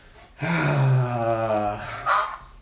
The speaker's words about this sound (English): What was that? Was that a duck? It was a duck. Ducks, man.